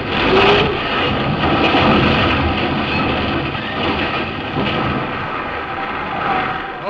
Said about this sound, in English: Look at the size of that wave. Great, Jehoshaphat. We're gonna take it on the port bow.